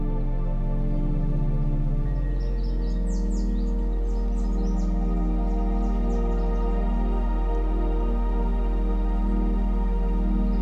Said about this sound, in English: You can hear the chirping of the birds,